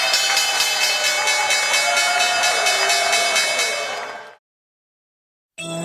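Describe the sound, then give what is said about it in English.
A stock exchange closing bell rings loudly and continuously, a rapid metallic clanging for about four seconds before it stops abruptly, followed by a moment of silence. “There is the bell.”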